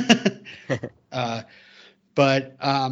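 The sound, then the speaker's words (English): A single sneeze, a voiced burst trailing off into a hissy breath, moderately loud, with short bits of speech just before and after it. “excuse me. Bless you.”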